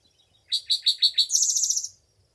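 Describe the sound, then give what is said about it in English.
A bird sings a short song: five clear, high descending chirps in a steady rhythm, then a rapid, buzzy trill, bright and loud with no talking. “Now listen. This is a song.”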